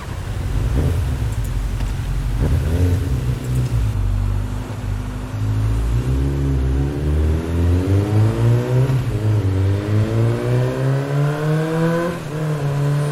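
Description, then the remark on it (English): A motorcycle engine in a music video revs and accelerates steadily in the evening, a man riding with another man, its pitch climbing through several gear shifts, loud with no voices. “He's like on a motorcycle with a gentleman, and it's in the evening, probably in Jamaica.”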